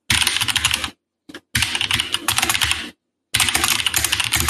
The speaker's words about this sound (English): By the way, your typing sound sounds so perfect. It sounds like a movie. It's like a sound effect, yeah, for real.